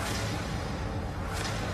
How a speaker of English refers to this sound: This one's called Double Whoosh.